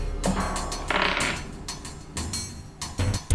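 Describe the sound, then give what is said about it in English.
A door mechanism clunks and grinds as it jams: a run of sharp mechanical clicks and rattles, a rough scraping strain in the middle, then a few heavy knocks at the end, with no voices. “The door is jammed.”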